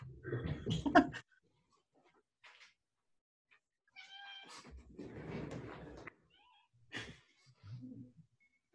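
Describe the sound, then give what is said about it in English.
A cat meows insistently several times to be let inside, with drawn-out, wavering cries separated by short pauses and some rustling, scuffling noise between them. “I got to let my cat in.”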